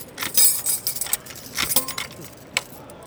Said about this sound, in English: Not only do you hear them keying each door like click-clack, click-clack, click-clack. As they walk between doors, you hear the keys jingle.